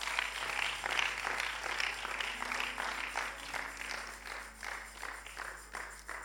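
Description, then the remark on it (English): A crowd applauds for Jesus, dense overlapping claps at a fairly loud level, tapering slightly toward the end, with no clear talking over it. “Put your hands together for Jesus.”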